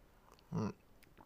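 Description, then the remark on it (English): One short slurp of someone sipping a cold melon smoothie that had been in the fridge all night, a brief wet burst that stands out against an otherwise quiet background. “But anyways, let me take a sip.”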